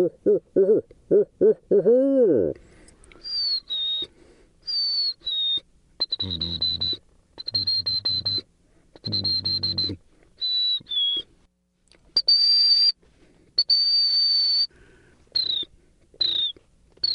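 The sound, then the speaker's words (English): A man whistles a series of bird-like calls inside a car, long steady high notes and short swooping phrases with brief pauses between them, after a few low hooting sounds at the start. “To get out of the wind, we duck into …'s car, and I ask him to whistle.”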